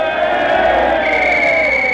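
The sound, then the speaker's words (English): A large, restless stadium crowd at a football game roars and murmurs continuously before the last half starts, a dense, steady wall of many voices at a constant loudness with no single speaker standing out. “The crowd is getting restless.”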